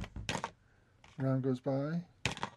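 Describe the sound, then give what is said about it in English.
A door opens and closes, with short clattering knocks at the start and end and two drawn-out, wavering tonal sounds in between, fairly loud. “You hear the door open and close as they pass into the northern section there.”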